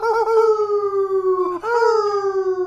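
Wild dogs bay in the distance at mid-morning with two long, mournful howls, each wavering and slowly falling in pitch, the second following a brief break, as they follow a scent. No one speaks.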